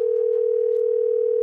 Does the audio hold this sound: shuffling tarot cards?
no